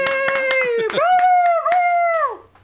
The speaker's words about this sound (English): Thank you. Let's have a nice round of applause